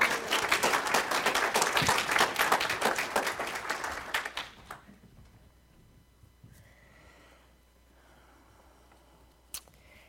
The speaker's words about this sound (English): Let's give all these community volunteers a round of applause.